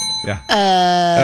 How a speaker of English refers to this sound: just hits her bell and then thinks about it. Yeah. She just thinks of the answer.